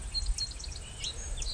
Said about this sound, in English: both an American robin and a gray catbird here, and a field sparrow. Field sparrow's ticking.